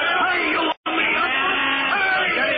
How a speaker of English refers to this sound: It is almost stopped. Listen to the cheering of the technicians as they run toward the ship. I'm trying to keep up with them. It sounds like Cape Canaveral on a good day.